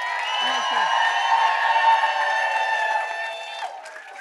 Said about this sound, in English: Crowd noise for the recording.